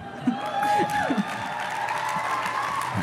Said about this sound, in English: I appreciate it, but you have to save your hands. You have a lot of clapping to do today.